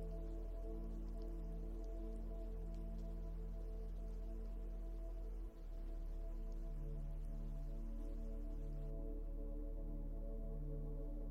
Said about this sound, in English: Go ahead and close your eyes, using your imagination to drift into the scenery of our waterfall.